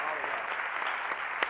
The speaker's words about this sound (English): Could I just, to this morning, could we just get a round of applause or appreciation for all of our musicians?